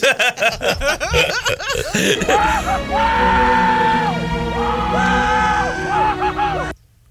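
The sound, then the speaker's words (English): In a movie clip, several men whoop and holler in a rowdy chorus of rising and falling "woo-hoo" cries, loud and sustained, with scattered laughter mixed in before it cuts off abruptly. “God, I know that sound. I know. Yeah, it's men going woo-hoo-hoo.”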